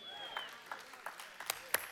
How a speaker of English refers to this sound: I'll help you clap on that one.